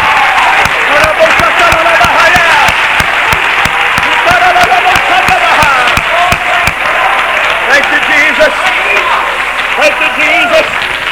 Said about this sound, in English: Let's give the Lord a good hand clap of praise.